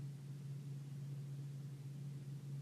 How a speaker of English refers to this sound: And then in this quiet environment, short of my voice, there's only very subtle sounds to hear. There's a little bit of a vibration happening from the air conditioning or the heat.